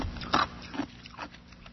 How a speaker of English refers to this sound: And yes, I chew ice. Does it annoy the people that listen to me on the internet? Oh, yeah. Is that a problem for me? No.